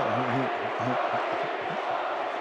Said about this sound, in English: Crowd still chanting Bogey. That's kind of awesome.